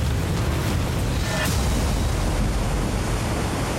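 A loud, unbroken roar of rushing floodwater mixed with heavy pounding rain, a dense hiss over a deep rumble that stays steady throughout, with no voices, heard at 11:30 p.m. on September 11, 2013, as a rising creek flooded.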